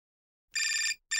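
A telephone rings in two loud, bright electronic bursts, the first lasting about a third of a second and the second starting just after a short pause, with no voices present.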